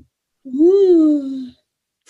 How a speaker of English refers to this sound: Ooh. I'm yawning.